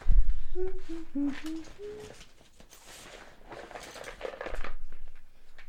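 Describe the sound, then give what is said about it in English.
Crinkling and rattling as an antacid tablet is taken from its packaging, with a few short, low hooting tones near the start, then scattered crackly rustles that fade and pick up again. “Except for the sound of me getting an antacid.”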